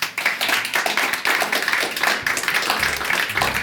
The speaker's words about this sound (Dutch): Wel, nogmaals een applaus.